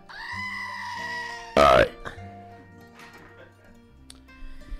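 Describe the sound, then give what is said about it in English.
A sudden, very loud scream bursts out for a fraction of a second, preceded by a sustained wavering, bleat-like cry and followed by quieter, scattered background sounds. “Where's a yell? Where's scream?”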